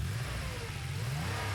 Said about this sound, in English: The car started up, purring like a kitten.